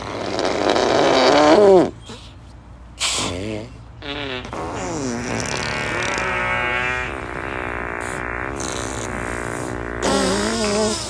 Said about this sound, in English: Oh, I thought that was a real fart. I was like, what the?